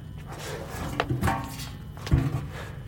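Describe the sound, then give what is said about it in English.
A tipped-over folding chair is set right side up, with a few wooden clunks and scrapes, the loudest thud near the end, with no one speaking. “Set the chair right side up.”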